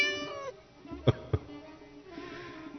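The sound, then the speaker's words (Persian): A cat lets out a drawn-out meow, followed by a pause with two sharp knocks, then another meow. Clear, with no talking. “ببین عبا اتنم افتاد و خم شدم، عبایم را از زمین بردارم که ناگهان نگاهم در چشمان گربه افتاد.”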